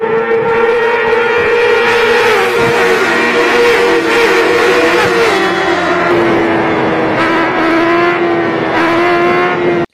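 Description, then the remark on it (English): A racing motorcycle engine in a video screams at high revs for the whole stretch as its rider lifts up into the air, its loud, buzzing whine dipping slightly in pitch partway through, then holding steady. No one speaks. “Watch this video and what happens to this motorcycle driver and how he lifts up off the air.”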